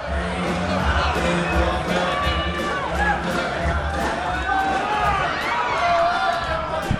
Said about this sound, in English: Holy shit. Why are they booing? He didn't finish a shoey. Another shoe. Somebody else needs to do the rest of it.